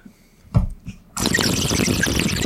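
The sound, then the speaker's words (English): A couple of soft wet sputters, then a steady rush of water spilling and splattering out of a person's mouth after sucking water in and looking straight down, continuing without a break to the end. “What you gotta do, suck the water into your mouth. And look straight down.”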